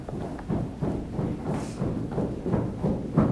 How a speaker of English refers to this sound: All right. We are going to stomp our feet.